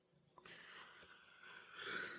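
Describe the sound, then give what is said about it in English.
A single sneeze bursts out, a sharp breathy onset followed by a hissy, noisy trail that lingers for a second or two, with no talking. “Bless you. Pardon me.”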